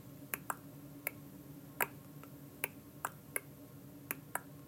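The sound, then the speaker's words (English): Sharp, crisp water drips in a cave fall in uneven, overlapping rhythms, about ten in under five seconds, over a low steady hum with a spacious, echoing feel. “So now think in other environments that now you have drips combined together, different rhythms.”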